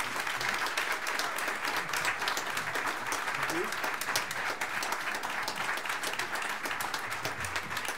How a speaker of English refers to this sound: You may applaud.